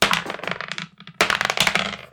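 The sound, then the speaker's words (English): Dice clatter and roll across a table in two quick bursts of rattling with a brief pause between them, no voices. “Grab your dice.”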